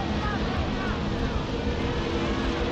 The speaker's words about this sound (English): At about 5 o'clock that afternoon, just as the sun was setting, there was a rumble of revving motorcycle engines roaring above the noise of the crowd. The crowd could hear the parade of Harley Davidsons long before they could see them.